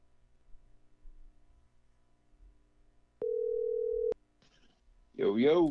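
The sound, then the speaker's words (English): A phone line rings once as a call is placed to a guest for an interview: a steady, clear electronic tone lasting about a second after a faint click, followed by a brief pause before someone starts talking. “Let's get him on the phone right now.”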